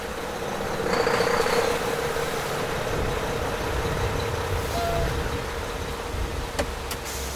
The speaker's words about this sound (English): Then a large semi pulled into the emergency lane.